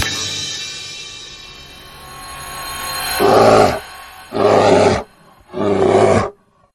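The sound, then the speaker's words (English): A bear growls in a low, rumbling snarl that builds, then breaks into three loud, harsh roaring bursts in quick succession before cutting off, the bear growl that opens the Bear State of Affairs segment. No one speaks. “Yeah, I want to hear the bear growl.”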